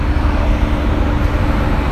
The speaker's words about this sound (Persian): من همین خیابونم الان صدای ماشین.